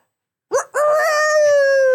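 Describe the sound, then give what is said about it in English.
A person imitates a rooster's crow with a loud, sustained, slightly falling call after a short initial syllable, alone without other talk. “Give us your best rooster caw.”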